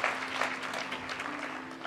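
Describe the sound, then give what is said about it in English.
An audience at a church service claps their hands in praise of God in steady, dense applause, a continuous wash of many overlapping claps with a faint low hum running underneath. “Give God a hand clap of praise for that.”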